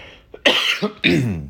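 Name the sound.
cough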